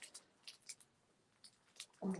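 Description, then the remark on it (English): Several quick, crisp, soft snips of scissors cutting at an uneven pace, before a person begins speaking at the very end. “Need better scissors in my life.”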